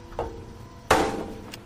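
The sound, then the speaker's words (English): A radiator is struck with metallic clangs: a lighter knock, then a much harder bang whose tone rings on and fades, with a faint tap at the end. No one speaks. “Bang it again, harder.”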